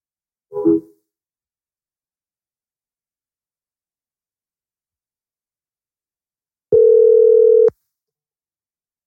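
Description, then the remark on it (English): A short electronic blip, a long stretch of silence, then a steady FaceTime outgoing video-call ringing tone sounding clearly for about a second, with no voices. “I called you on FaceTime.”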